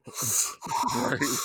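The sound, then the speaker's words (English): A voice mimics heavy, wheezing breathing, two long raspy breaths separated by a brief pause, loud and noisy with a hoarse, strained texture. “Why would you fight a guy who teleported and when he start doing that breathing shit”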